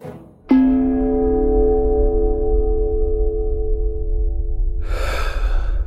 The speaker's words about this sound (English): As the box leaves your hands, the arc is perfect, and the box catches the light as it strikes the side of the bell. The bell rings out. The tiniest ding, but you could almost swear it sounds a bit like a steel drum.